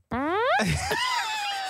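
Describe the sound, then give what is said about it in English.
A single voiced fart imitation, about a second and a half long: a loud rising buzzy tone that breaks into a sputtering, wavering trail. “We know what a fart sounds like”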